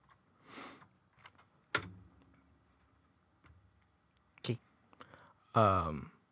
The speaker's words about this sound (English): I should turn this on, huh? I'm gonna use my fucking keyboard.